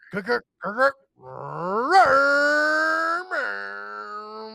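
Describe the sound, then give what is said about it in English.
A man's voice imitates a revving engine, starting with two short guttural bursts, then a long rising growl that holds steady before dropping into a second sustained roar, loud. “and this is the Beer League Boys final fucking engine roar.”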